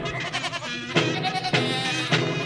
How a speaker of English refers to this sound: All right, then sheep it is. Bring on the sheep.